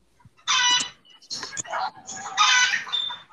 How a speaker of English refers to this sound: The fuck? Why is there chickens in the background now?